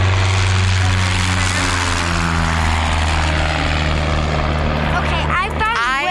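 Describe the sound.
A small propeller plane drones steadily overhead, its loud, buzzing engine hum holding for several seconds with a slight pitch shift as it passes, while voices murmur faintly near the end.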